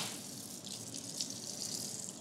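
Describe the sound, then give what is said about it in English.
A thin stream of water trickles steadily into a glass of whiskey aged in French oak, a touch of water to soften it, for a couple of seconds, a soft continuous pour with a faint airy splash and no talking. “I need a touch of water.”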